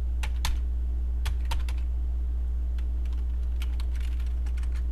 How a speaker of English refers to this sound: It's not letting me fucking type. There we go.